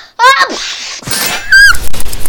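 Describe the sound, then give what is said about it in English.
A loud, exaggerated sneeze caused by a tickle on the nose: a quick voiced wind-up, then a big breathy burst, followed by a second noisy gust, a short squeaky vocal cry and a low rumble. “I didn't mean to sneeze so big.”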